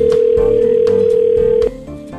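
A steady, mid-pitched phone tone hums loudly for about a second and a half as a call is placed, broken by a few soft clicks, then cuts off to a quieter line.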